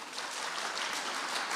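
An audience claps steadily throughout in applause for Himlen TV7, a Finnish TV channel that has begun working in Sweden, a dense, continuous patter of many hands at moderate volume with no voices standing out.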